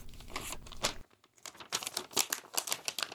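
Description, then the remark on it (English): Stiff paper crinkles and rustles in a quick series of sharp crackles as a large printed blueprint of a building is unfolded, with a brief pause partway through before the crumpling resumes, louder. “I printed out a blueprint of one of the buildings.”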